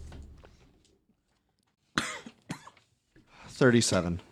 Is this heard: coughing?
yes